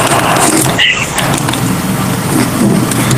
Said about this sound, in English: No, I have my air conditioner on in my office because it's super hot.